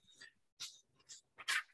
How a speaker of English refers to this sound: Sometimes when something goes outside, my dog just goes crazy, starts barking.